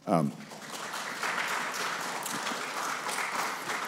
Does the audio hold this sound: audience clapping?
yes